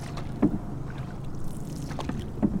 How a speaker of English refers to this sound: Today, he and a few other guides are taking us out on the Mississippi. Before we can go anywhere, we review river safety and each cinch up a life jacket. Then it's time to carry the canoe down to the river's edge and get paddling upstream.